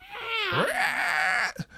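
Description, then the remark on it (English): A loud, drawn-out monster scream from Minnie roaring like Godzilla, the same scream as in Keep on Rolling, with a harsh, harmonic tone. Its pitch swoops down, then climbs and holds in a strained wail for over a second before cutting off with a short rough gasp. “And as that's the same scream from Keep on Rolling.”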